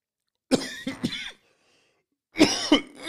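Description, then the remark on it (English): Two bursts of harsh coughing, a cluster of three quick coughs, a short pause, then another run of loud, raspy coughs. “Hold on, let me just wash that that cough down with a little bit of this bung bung bean, that triple B.”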